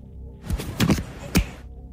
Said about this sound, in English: So I think it is putting on the head of an electric toothbrush and clicking it into play.